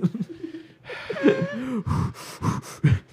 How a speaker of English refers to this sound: He's kind of struggling to breathe. No, he just always sounds like that.